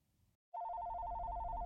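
After a moment of near silence, a telephone bell on John's desk starts ringing loudly, a steady rapid trill that continues unbroken to the end with no voices.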